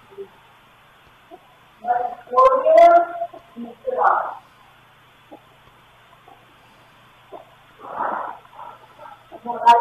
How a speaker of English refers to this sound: Is that something? It's breathing.